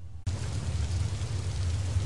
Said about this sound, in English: As the rain comes down outside.